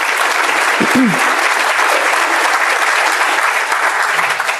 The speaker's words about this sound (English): You can clap for that.